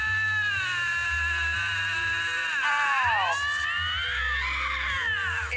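Two bobcats on a road scream at each other in a loud, continuous exchange of eerie, wavering wails that rise and fall in pitch and overlap, sustained for several seconds with no talking.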